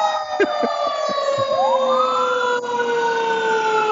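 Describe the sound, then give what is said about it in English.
A Los Angeles Fire Department hook and ladder truck's siren wails loudly, its tones sliding and shifting in pitch as the vehicle passes, filling the whole stretch without pause. “There's an ambulance coming, or a fire truck.”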